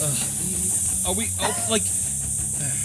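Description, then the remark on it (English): A steady sizzling hiss runs the full length, bright and constant, with some muffled voice-like sounds rising briefly beneath it near the middle. “It's like the sizzling from the...”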